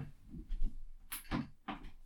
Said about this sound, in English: The cat scratching at the door. Oh, it's Zombie. And Gigi. They were very upset we had the door closed.